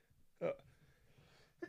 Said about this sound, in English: excuse me, I might have to sneeze here.